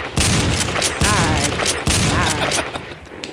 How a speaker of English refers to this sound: Gunshot. Shots fired.